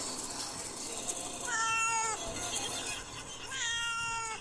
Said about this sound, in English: Can I play a video of the cat on the way to the vet? Yes, please.